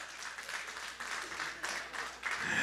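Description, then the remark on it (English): An audience breaks into steady applause, a dense wash of many hands clapping together that holds at a fairly even level throughout, neither swelling nor fading much. “And so this egg, oh, y'all can clap for that.”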